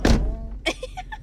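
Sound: car door opening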